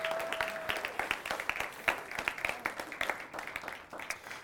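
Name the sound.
audience hand clapping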